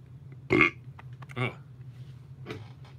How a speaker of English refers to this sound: Excuse me, I burp a lot. Sorry.